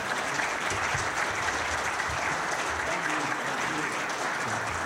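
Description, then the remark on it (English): An audience at a Sunday morning church service claps for the debaters, a dense, continuous wash of applause that holds at an even, fairly loud level for the whole stretch without pausing or fading. “Let's give our debaters a round of applause.”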